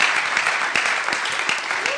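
An audience at a church service applauds the talk show segment steadily, many hands clapping at once in a dense, continuous patter with a few sharper claps standing out, fairly loud throughout.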